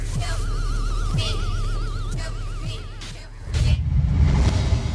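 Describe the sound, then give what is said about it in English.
A car sits idling while going through a car wash, a low engine rumble under faint warbling tones, until a loud, dense rush of spraying water and machinery swells partway through. “signing off, going to the car wash.”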